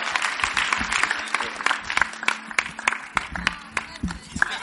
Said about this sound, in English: Keep clapping, keep clapping. Keep on clapping. At the back, I can see your hands not moving.